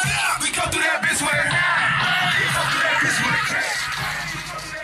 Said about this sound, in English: This is a video of dozens of young men and women in a club shouting the lyrics